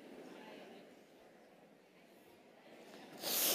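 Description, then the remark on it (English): A quiet stretch of background noise ends with one short, sharp, loud sniff, a breathy hiss of air drawn in through the nose. “As we sniff, praise the Lord.”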